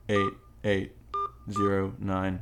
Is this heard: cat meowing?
no